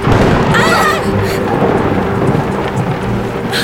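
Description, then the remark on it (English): A loud, close thunderclap from a lightning storm, heard aboard a sailboat on the water, rolls into a heavy, sustained rumble, with rain hissing throughout and a brief voice near the start. “That lightning was close.”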